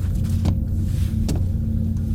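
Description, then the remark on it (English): A steady, heavy machinery rumble with a low droning hum fills an engine room, broken by a couple of faint metallic clicks. “The engine room floor is not the optimal location for mental, emotional, and physical recuperation.”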